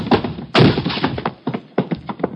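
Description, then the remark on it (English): A locked door is forced open with a heavy crashing thud, followed by a rapid string of loud bangs and knocks of splintering wood, with no voices. “let's hit the door.”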